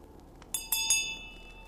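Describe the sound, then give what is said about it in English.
A small hand bell rings with three quick strikes in a row, each leaving a bright metallic tone that lingers and slowly fades. It is fairly quiet and there is no talking. “I raise my bell and I ring it.”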